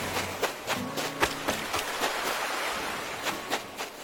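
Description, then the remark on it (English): Rapid, evenly spaced footsteps of a little human character running on the beach in the video game New Horizons splash through shallow water over a steady hiss of surf, each step a short bright slap in a running rhythm. No one speaks. “I make my little human character run on the beach just to hear the sound of their feet on the waves.”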